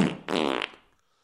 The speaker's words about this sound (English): because it's one of those nights where I just want to watch Sex in the City, eat a bowl of cheese puffs, and sniff my fart in a jar. Oh, welcome to the United States of America. It's Saturday night, and I'm going to do me some fart sniffing.